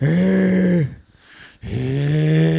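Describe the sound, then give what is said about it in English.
A voice imitates the wrestler Nails' heavy-breathing delivery: two long, loud, groaning breaths with a raspy, voiced edge, separated by a brief pause, with nothing else around. “and then the incomplete with the Nails delivery of breathing really heavily, like.”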